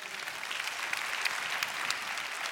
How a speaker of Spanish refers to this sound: Un aplauso a Cristo.